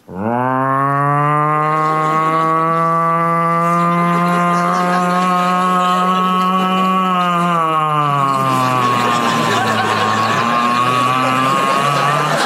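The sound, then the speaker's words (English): A voice imitates the old-fashioned siren heard after a gunshot at the end of the Hitchcock movie Rope: one long, low, droning wail that holds steady and swells slightly, then slides downward into a rougher, breathier tone near the end. “And then you hear this old-fashioned siren. And it was so slow and beautiful.”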